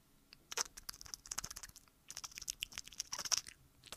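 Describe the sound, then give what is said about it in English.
Rapid, irregular crunchy stabs of a felting needle into wool, fired in two dense bursts separated by a short pause. The sound is soft and crisp, with no voices. “It's like this crunchy little stabbing sound.”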